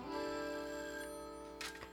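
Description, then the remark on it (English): A kitchen telephone bell rings steadily for about two seconds, a bright sustained metallic ring with a brief rattling burst near the end, heard alone with no voices. “gather around the kitchen phone as Ranger Doug calls Miss Marne”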